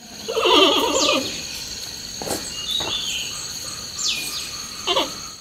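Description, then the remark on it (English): A Qinling giant panda gives one loud, quavering, sheep-like bleat, followed by a few fainter, shorter calls, with a steady high insect drone running underneath. “And this is what a giant panda sounds like. I know it sounds like a sheep. It's not a sheep.”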